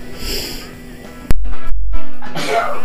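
A single loud, abrupt sneeze bursts out partway through, sharp and sudden, then trails off into a breathy rush of air. No speech accompanies it.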